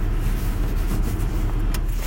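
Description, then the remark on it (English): A car engine, just started, idles at a red light with a steady, low rumble, even in loudness throughout, with no voices or other distinct sounds. “Just narrating, another red light. Just started up in order to stop again.”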